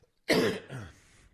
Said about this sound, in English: I just had to read the sentence again. It's making me cough.